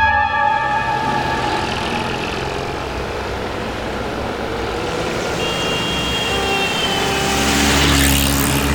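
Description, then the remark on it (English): A loud, steady engine roar of the car Bessie moving at speed while steering herself with a traffic avoidance sensor, with droning tones and road rumble throughout, swelling into a rushing whoosh near the end. “Do you have to drive so fast? I'm sure we're going to hit something.”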